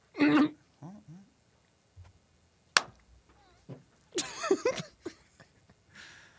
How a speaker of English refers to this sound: I clap way too loud. Like when I just normally clap, it's way too loud. Like everyone can hear me clapping.